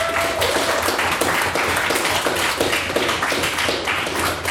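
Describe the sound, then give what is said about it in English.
A crowd applauds steadily after a speech, a dense wash of many hands clapping at once, sustained and fairly loud throughout with no talking over it. “Yes, can I please get another round of applause for another fantastic pen speech?”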